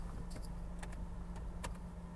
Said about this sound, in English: It's like hum, hum, hum, hum, hum. Is that my car? Maybe it's the car next to me. I'll see when I park. I'll open up the hood. But Jesus, it sounds terrible. I mean, it's repetitive, so it's probably like a belt issue.